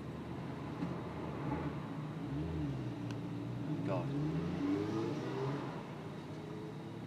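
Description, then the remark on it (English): A motorbike engine revs and pulls away from a toll booth, its pitch climbing steadily over a constant low rumble, with a man's brief remark heard over it. “There's a motorbike in front of me, and the guy on the bike is taking his time.”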